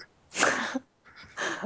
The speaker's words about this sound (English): You can just hear that she's coughing. She might be sick with a plague that I created.